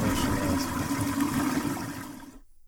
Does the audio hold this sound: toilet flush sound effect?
yes